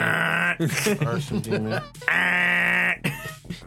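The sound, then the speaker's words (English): A voice mimics fax machine noises: two long, loud, steady nasal screeches with a warbling, bleating stretch between them, with no other sounds around. “It just makes does, fax machine noises. It does kind of sound like a goat, I guess.”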